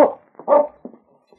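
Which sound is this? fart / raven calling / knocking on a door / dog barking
dog barking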